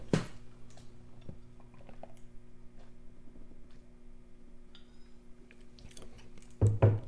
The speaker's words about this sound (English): Pardon me while I get a drink of water.